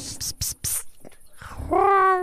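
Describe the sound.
A few breathy, whispered hisses, then a person's voice rises into a drawn-out, nasal meow imitating a sick cat that sounds like it is dying, fairly loud at the end.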